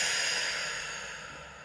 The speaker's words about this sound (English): So I feel very, very blessed and I'm holding my hands into a namaste now as I'm breathing in and breathing out.